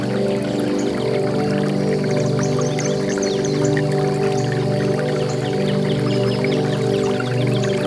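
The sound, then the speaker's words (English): River water trickles and babbles steadily downstream throughout, a constant flow with no pauses, layered over a low, even humming drone. “Chuckling to itself as the water trickles downstream.”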